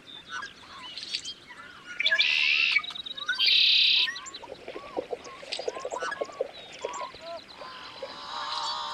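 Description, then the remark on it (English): Loud, harsh, strained calls and songs of yellow-headed blackbirds sitting on top of cattails, with two buzzy, grating bursts standing out amid a busy chorus of other chirping birds in a marsh at dawn as the sun crests the horizon. “The first thing that stands out are the loud, harsh and almost strained calls and songs of the yellow-headed blackbirds in front of us.”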